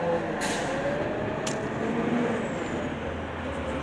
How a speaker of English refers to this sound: Here comes the truck again. So excuse me for a minute while they make a lot of noise.